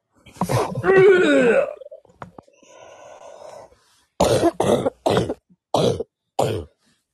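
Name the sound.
coughing fit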